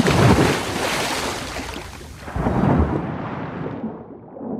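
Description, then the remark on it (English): Broad, rumbling wash of ocean water surging in two heavy swells around a chartered boat off the coast of South Africa, with deep low-end roar and hissing spray, loud, no voices. “To answer those questions, I've chartered a boat to the coast of South Africa, and I'm suiting up in a scuba suit, stepping into a shark tank, and plunging into the sea to see if I can find a shark to talk to.”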